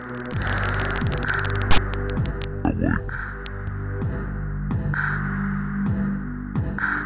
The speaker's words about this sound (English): And the file was corrupted, and my conversation was nothing more than bad static and clicks. But how the audio ended had me shook.